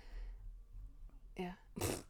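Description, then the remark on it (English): A person makes a mouth fart noise: a brief buzzy sputter followed by a louder, noisier blast of lips, lasting under a second, over a low background hum. “Oh, I love that little fart that you do with your mouth.”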